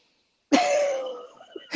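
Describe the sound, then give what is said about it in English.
A harsh, raspy cough from a person unable to clear their lungs out bursts out after a moment of silence, rattling briefly before trailing off, with the start of another cough at the very end. “I developed a cough from not being able to clear my lungs out. So now I have a cough.”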